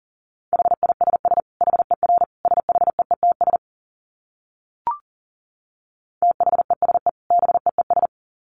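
Fast Morse code at 40 words per minute keyed as a steady mid-pitched tone in rapid dits and dahs, two bursts separated by a pause with a single brief click, no voices.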